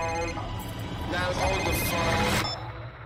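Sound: flip phone ringing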